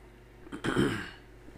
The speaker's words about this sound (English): Sorry, clear my throat.